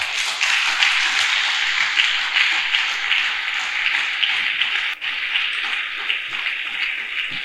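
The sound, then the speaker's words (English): A church audience claps for the Lord, a dense, continuous wash of many hands with no distinct individual beats, holding an even loudness for several seconds with a brief dip near the end. “Come on, keep clapping. Keep clapping.”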